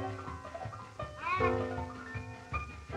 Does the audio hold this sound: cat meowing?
yes